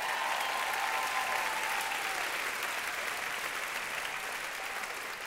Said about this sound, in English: Somebody clap if you believe that.